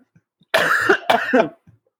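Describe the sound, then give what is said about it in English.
A person gives two harsh coughs in quick succession, fairly loud, with a brief pause between them and near silence around them. “Hey, you're coughing.”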